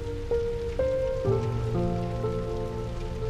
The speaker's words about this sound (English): the sound, the rumbling sound of the sanctuary of the town hall as it collapses in finally from the burning is all you hear. And the roar of the inferno around you.